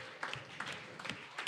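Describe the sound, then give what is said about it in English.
Light, scattered applause from a small group for team 2 in a team game, a few quick clap bursts over a soft, hissy background, fairly faint and brief, with no clear talking. “Round of applause, team 2.”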